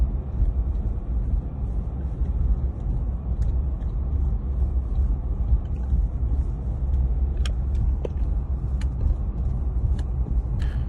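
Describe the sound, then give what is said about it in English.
Many trucks blocked in on the Sir John A. McDonald Parkway idle and rumble steadily, a dense low drone filling the scene, with a few faint sharp clicks and hisses breaking through near the end. “They're blocked in there and there's a significant amount of trucks.”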